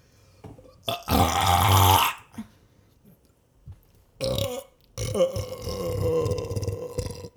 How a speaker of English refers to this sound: Well, fuck. I get more beer. I'll edit this to where it's just quick burps.